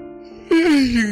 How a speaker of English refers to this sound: There's a yawn there.